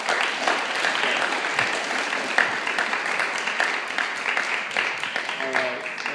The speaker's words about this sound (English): will you go ahead and join me in welcoming Jared up? Give him a big round of applause.